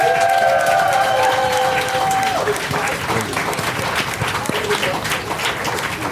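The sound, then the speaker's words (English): A crowd breaks into sustained applause, dense rapid clapping filling the space, with a few whistles or cheers ringing out at the start before settling into steady hand-clapping. “Give a one round of applause for all of you, man.”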